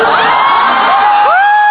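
A loud, dense roar of fans cheering and shouting at a band in 2009, with high rising whoops and yells cutting through the steady wall of crowd noise throughout.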